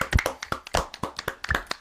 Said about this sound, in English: 2 year anniversary, ladies and gentlemen. Can we get a round of applause for the 2 year anniversary for the Brownies?